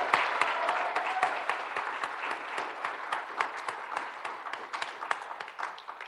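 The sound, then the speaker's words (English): A convention crowd applauds the event's organising leader steadily, many hands clapping in a dense, even wash of sound that holds for several seconds before starting to thin out toward the end. “It really does take a village, as you know, but she forgot to mention herself, our fearless leader, so if we could please give her a round of applause.”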